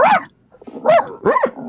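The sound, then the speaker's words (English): A person imitates a dog barking, giving three short, bright bark-like yelps in quick succession, fairly loud, with brief pauses between them. “Happy barking.”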